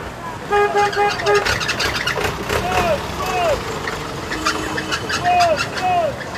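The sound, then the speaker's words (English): A busy roadside on Obersee OK Road, the only vehicle access into Sodom and Gomorrah, where trucks of scrap are constantly unloaded: trucks rumbling and idling, short horn toots sounding repeatedly over steady traffic noise, scattered knocks, and people talking indistinctly in the background. “On Obersee OK Road, the only vehicle access into Sodom and Gomorrah, trucks of scrap are being constantly unloaded.”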